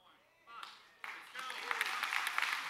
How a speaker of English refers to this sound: Okay, yeah. The first claps were good, that's a golf clap.